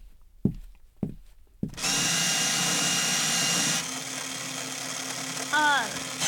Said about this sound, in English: Is this just a paper shredder? Yes!